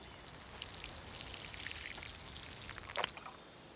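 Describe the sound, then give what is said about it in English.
Water pours and patters steadily, like a watering can sprinkling over forget-me-not flowers, with a brief louder splash near the end. Fairly quiet, with no voices. “Water those forget-me-nots, will you?”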